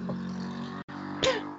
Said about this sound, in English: Pardon me. I just had to rip a fart.